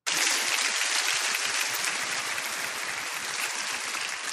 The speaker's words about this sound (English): Give God a hand. I can't applaud that.